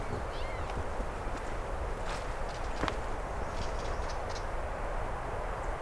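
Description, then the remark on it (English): A catbird gives a few sharp, dry snapping clicks, like sticks breaking, a little distant, scattered over several seconds against a steady, noisy outdoor background, with faint higher chirps mixed in. “That kind of sound of broken sticks, that's also catbird.”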